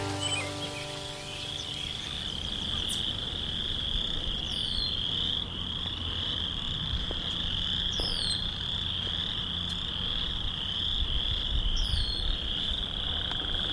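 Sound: frogs croaking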